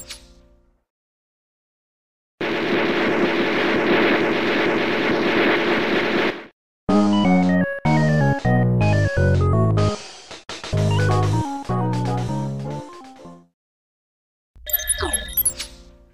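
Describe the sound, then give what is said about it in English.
Wacky, jazzy soundtrack music from the video game King of Chicago in choppy, stop-start bursts of bright synthetic notes, following a few seconds of dense roaring noise, loud with no talking. “The wacky, jazzy tones of King of Chicago Boat.”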